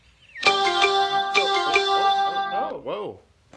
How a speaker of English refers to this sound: Whoa. We're both looking at the phone. What kind of alert was that?